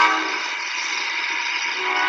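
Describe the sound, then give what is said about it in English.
A train rolls past, a steady, loud rushing roar with a humming, tonal edge that holds at an even level throughout, with no voices over it. “There it goes, the train.”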